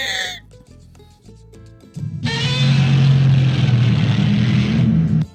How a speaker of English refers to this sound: From 1954. Oh. Godzilla movie. What makes Godzilla's roar? Here we go. Let's listen.